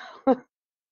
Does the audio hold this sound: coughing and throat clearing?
yes